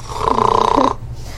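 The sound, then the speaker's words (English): A large, drooly creature, knocked out and lying on its back, lets out one loud, ugly snore, a rough, gurgling rasp lasting just under a second before it cuts off, leaving a low background hum. No one speaks. “It just rolls onto its back and starts snoring. Not in a cute way either. It's an ugly snore.”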